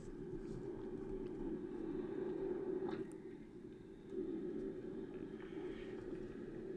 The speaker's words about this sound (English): Doesn't it sound like a roaring waterfall there?